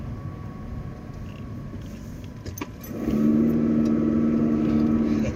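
A bus engine rumbles steadily in traffic in Milton Keynes, then grows louder around the midpoint with a sustained droning whine as it accelerates; no talking.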